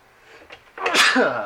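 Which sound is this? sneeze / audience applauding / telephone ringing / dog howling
sneeze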